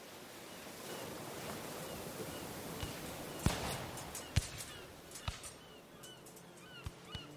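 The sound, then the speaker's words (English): Steady surf washes against a sandy shore with a soft rush of breeze, broken by a few sharp cracks and faint bird calls. No one speaks. “Picture yourself on a sandy shore, watching a ship blown into harbor by a strong breeze.”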